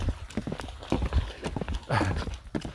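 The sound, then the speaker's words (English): Footsteps clank along a wooden boardwalk in wetlands on a warm, windless day with blue skies, in a steady walking rhythm, each step a hollow, knocking thud, fairly loud and repeated several times over a quiet background. “I'm on the boardwalk. You hear me clanking along.”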